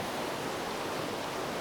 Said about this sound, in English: we're coming to this tiny little stream that's leading into the river.